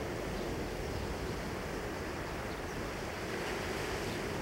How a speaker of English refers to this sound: They stand on a circle drawn in the sand, and the waves are already washing it away